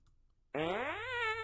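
A single loud fart sound effect bursts in abruptly after a moment of near silence, a buzzy, tonal blast that slides upward in pitch and holds for about a second.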